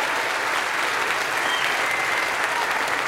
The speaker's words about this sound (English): Give God some applause right now. God is good.